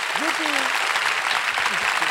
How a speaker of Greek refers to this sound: αυτός ο καλλιτέχνης είναι εδώ και θέλω να τον χειροκροτήσουμε ως υπέροχο δημιουργό.